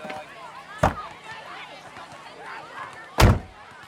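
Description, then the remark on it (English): Two sharp, solid thumps about two seconds apart, like a door being shut and locked, with faint voices murmuring in the background between them. “Mama, lock the door.”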